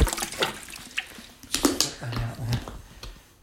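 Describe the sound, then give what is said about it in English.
Holy water being sprinkled just inside a place to drive out a spirit, in quick, irregular splashes and spatters, fairly crisp, with a few brief murmured vocal sounds in between. “Sprinkle it to here. Sprinkling it just inside.”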